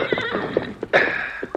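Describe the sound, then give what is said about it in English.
A horse whinnies loudly, a brief quavering neigh over the steady clip-clop of hooves, with no voices present. “Use this horse, Thundercloud.”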